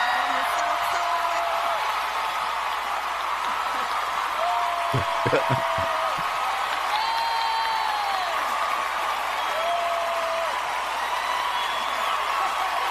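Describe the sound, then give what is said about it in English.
A large crowd cheers and applauds former First Lady Michelle Obama in a loud, continuous roar, with piercing whistles and scattered whoops rising above the steady wash of clapping the whole way through. “Michelle Obama could hardly get the words out because the crowd wouldn't let her.”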